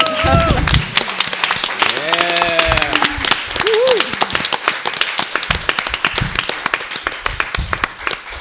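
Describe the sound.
A crowd claps steadily and densely throughout, the many hands blending into a continuous patter, with a few brief voices calling out or cheering over it early on.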